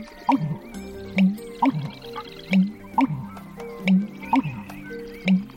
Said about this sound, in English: Also, listening in as the marshlands of North Dakota come alive with the migrants of spring.